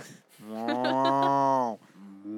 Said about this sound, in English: You heard a cow?